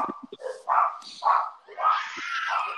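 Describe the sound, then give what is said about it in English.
Several dogs bark and yip excitedly in quick, overlapping bursts over food thrown to them, building into a continuous, frantic clamor toward the end. “Okay, did you just throw it to the dogs?”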